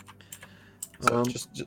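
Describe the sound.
A few quick, light keystrokes clack softly on a computer keyboard as someone types a description into a character sheet, and then a voice briefly speaks over the tail end of the typing.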